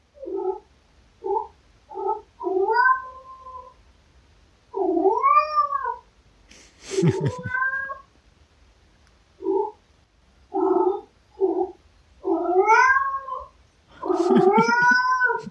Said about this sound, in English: it's not like there is a meow, but there's like a grunt. He just grunts at us. Have a listen to this.